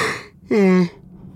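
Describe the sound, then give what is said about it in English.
A single loud yawn with a voiced, slightly falling groan that lasts about half a second, then trails off into quiet. No one speaks. “Sorry about the yawn.”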